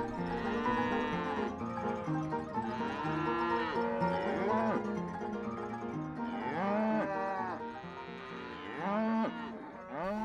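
A herd of cattle mooing loudly, with long, drawn-out moos overlapping one another without pause for about ten seconds, and no one talking.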